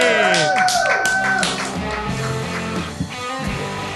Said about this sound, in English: Ladies and gentlemen, a round of applause for our next hero.